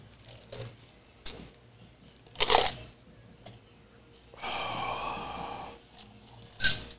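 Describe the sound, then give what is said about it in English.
A sharp hissing pop as a drink can is opened for a toast, followed by about a second of steady fizzing pour, with a few scattered clicks and clinks around it and no talking. “I'm going to pop it open, and this is going to be like a cheers to you also, man, for, being a new dad again.”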